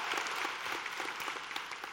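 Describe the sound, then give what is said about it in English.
An audience at Linked Up Church bursts into sustained applause for the church's men, many hands clapping at once in a dense, steady patter with scattered sharper claps standing out. No one speaks over it. “So one more time, can we give the good men of Linked Up Church a big round of applause?”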